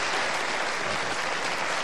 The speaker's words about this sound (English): How many of you have been here before? Applaud if you have been here before.